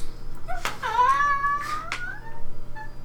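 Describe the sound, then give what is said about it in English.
An adult female domestic cat gives a drawn-out, wavering meow, bracketed by a couple of shorter chirpy calls, over a faint steady background hum with no talking. “Like when we're talking to her, she's like, meow. That's Boss. Boss does that.”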